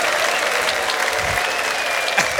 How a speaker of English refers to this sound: Let's give it up for the band. I like that music. Come on, let's give it a round of applause for the band.